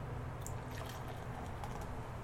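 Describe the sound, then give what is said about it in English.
A quiet pour of rich amber-colored ale into a glass, forming a khaki-colored head with tiny bubbles, with soft, faint liquid trickling and light fizzing over a low background hum and no talking. “Right, didn't make very much noise, but it's a beautiful, rich, amber-colored ale.”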